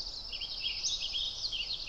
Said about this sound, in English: It's a vibrant, bubbly song that kind of sounds like the bird is saying, "If I see you, I will seize you and I'll squeeze you to squirt." Ridiculous, I know, but mnemonics like this help birders remember all the different songs.